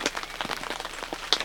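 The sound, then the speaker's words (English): Steady rain patters on a tent overhead on a cloudy day during a turkey hunt, a dense, irregular scatter of drops with an occasional sharper tap, fairly quiet and continuous with no voices. “Well, sitting here in the tent, raining, cloudy day.”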